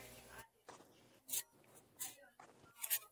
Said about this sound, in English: All right, so I'm shuffling. Shuffling.